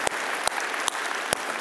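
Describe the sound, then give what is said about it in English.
A church audience applauds steadily for people who have just decided to follow Jesus, a dense wash of clapping with a few sharper, louder claps standing out at intervals. No one speaks over it. “Hey, would you applaud for a bunch of people that made that courageous decision?”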